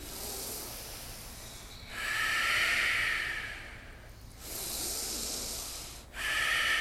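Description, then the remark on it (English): Ujjayi yoga breathing: long, steady, hissing breaths through a constricted throat, about four in a row with brief pauses between, fairly soft, and no talking. “Ujjayi in.”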